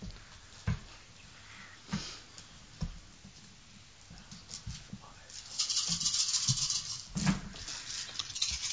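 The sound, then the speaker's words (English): Dice are rolled for a negotiation roll in a game, clattering and rattling across a surface: scattered sharp clicks and taps at first, then a denser, louder stretch of rattling with a few hard knocks near the end. “I love the sound of dice.”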